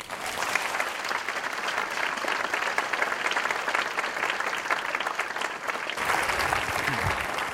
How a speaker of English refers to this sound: deserves a second round of applause because he is responsible for the drawings in his presentation.